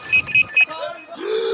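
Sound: phone ringing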